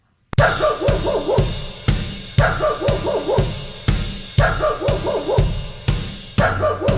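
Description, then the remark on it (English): A dog barks loudly and repeatedly in a fast, steady rhythm, the barks slightly harsh, continuing without pause for several seconds with no voices present; a recording of a neighbor's dog barking, blasted back loudly at the neighbors. “Their own dog's barking being blasted back at them.”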